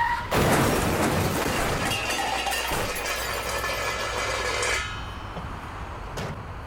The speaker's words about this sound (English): Turns out I'd inadvertently crashed into the bus